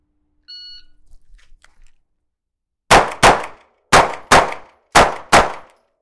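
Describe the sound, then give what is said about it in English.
A short electronic shot timer beep, then six sharp, loud gunshots fired in three quick pairs, two shots on each steel target in a drill started from the surrender position, each ending in a ringing metallic clang as the rounds hit. No one speaks. “So 2-2-2, a reload, 2-2-2, and we're gonna go from the surrender position if I can get our shot timer on.”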